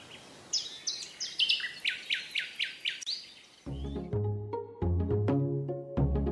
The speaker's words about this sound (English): And with this new information in mind, I'm sure I am one of many people who can't wait for spring to come back around so we can hear birdsong again live.